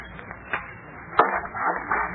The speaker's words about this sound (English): What are you doing, sir? Tearing off the paper on the inside of the back cover of the Lonely Trail.